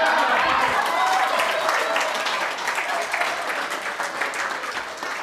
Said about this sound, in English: And if you know who Michael Beckwith is, and I'm sure many of you do because you're clapping, like, he just lets it ride, right?